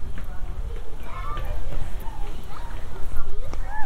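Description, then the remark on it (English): Children play a game on a playing field, chasing each other round and round in circles. Footsteps patter amid high-pitched shouts and chatter, with a steady outdoor background hum throughout. “Kids chasing each other round and round in circles.”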